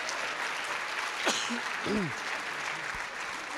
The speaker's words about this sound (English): Please give our football players a big round of applause.